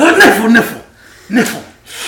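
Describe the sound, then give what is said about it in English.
A loud, breathy sneeze bursts out in two parts, a drawn-out voiced build-up and then a sharp hissing release, followed by a softer breathy exhale. “Bless you.”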